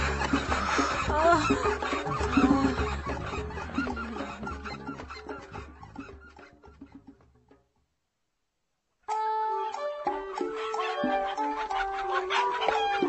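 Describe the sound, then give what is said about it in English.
Chickens cluck busily and loudly for about seven seconds, fading before a brief silence; afterward a steadier, more tonal sound takes over, like music. “This was all the creepy red-eyed chicken thing.”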